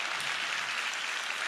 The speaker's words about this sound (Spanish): ¿Por qué no le dan un fuerte aplauso a nuestro Dios? De verdad, vale la pena hacerlo.